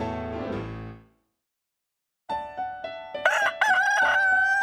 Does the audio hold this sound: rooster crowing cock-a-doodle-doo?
yes